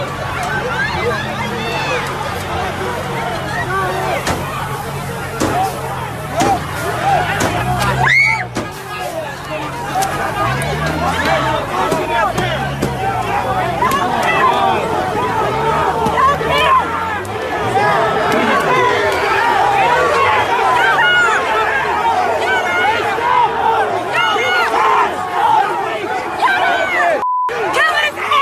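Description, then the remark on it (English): A large, agitated mob of many dozens of people shouts and yells over one another in a dense, continuous roar of overlapping voices, loud throughout with no pauses, as they pull a truck driver out of his truck and beat him. “So first, here's a truck driver being pulled out of his truck and beaten by a mob of many dozens of people.”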